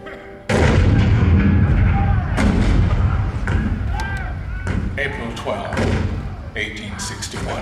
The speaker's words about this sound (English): April 12, 1861, Fort Sumter. The cannon spoke for war, bitter, violent, and devastating.